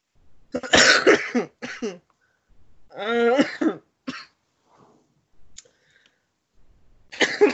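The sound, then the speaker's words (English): A person coughs loudly in several harsh fits, some rough and strained, separated by short pauses, with a final cough at the end. “Stop coughing, maybe.”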